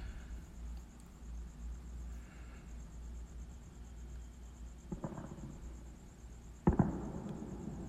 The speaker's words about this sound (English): I don't know if y'all heard that or not, but somebody's letting off some fireworks. 4th of July. Independence Day.